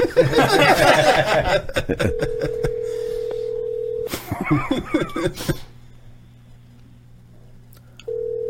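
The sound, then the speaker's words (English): A steady telephone tone hums in bursts as someone keeps calling a mobile phone, between clattering, chattering noise and a snicker of laughter, the flat tone cutting out and returning near the end. “Just keep calling until he answers.”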